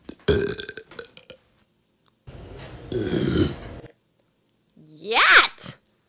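Three loud burps separated by short pauses, submitted to a burping competition: a choppy one first, then a long rumbling belch, and finally a sharper, higher-pitched burp that rises and cuts off. No talking.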